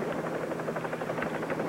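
helicopter rotor noise

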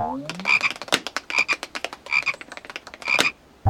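frog croaking

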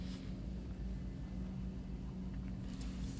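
airplane flying overhead

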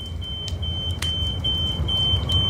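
smoke alarm beeping

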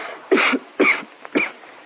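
woman coughing

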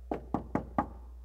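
knocking on a door

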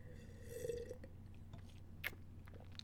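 sipping red wine

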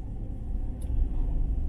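car interior engine rumble

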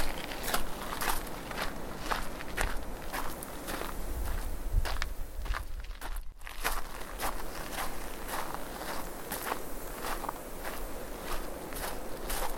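footsteps walking outdoors

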